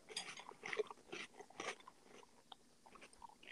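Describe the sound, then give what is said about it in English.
Crisp crunching of a chocolate cereal with marshmallows, similar to Cocoa Puffs, being chewed close to the microphone: a run of loud bites and grinding crunches in uneven rhythm, tapering into softer lip smacks and small crackles, with no talking. “Crunch again with a little closer.”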